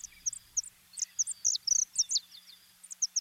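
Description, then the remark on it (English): A saffron finch sings a quick series of short, high, sharp chirps, bunched into rapid clusters with brief pauses between, alone over a faint low background hum; a field recording from the Cornell Lab of Ornithology. “University of Hawaii Hilo Professor Patrick Hart introduces us to the saffron finch.”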